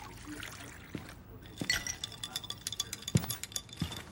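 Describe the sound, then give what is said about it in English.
Glasses clink together in a toast to a successful night, a few bright ringing taps spread across the moment, moderately loud, with faint liquid sloshing and small rattles in between. “Cheers to a very successful night all around.”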